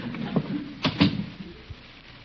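A door opens with a soft rattle and then shuts with two close knocks, followed by a faint thud, with no voices.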